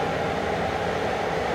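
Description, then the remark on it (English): A locomotive rumbles steadily past at Bielopolje railway station, a dense, continuous low roar with a broad mechanical hum, fairly loud, with no voices. “There's a loco about to go past.”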